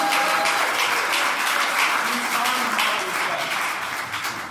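Steady audience applause for a pastor as he comes up, filling the whole stretch, a dense wash of many hands clapping at an even level before easing off slightly toward the end, with no voices standing out.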